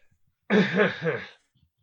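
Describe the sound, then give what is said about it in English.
A single loud sneeze bursts out after a brief quiet, with a rough voiced tail trailing off over about a second, and silence after it. “Bless you.”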